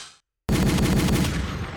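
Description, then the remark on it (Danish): A loud burst of rapid gunfire sound effect, played from a soundboard app, bursts in abruptly after a brief silence, with dense rhythmic shots rattling on continuously to the end, like a machine gun. “Jeg har lige åbnet min soundboard-app, jeg bruger til min hiphop-podcast, så vi kan lige gøre sådan her.”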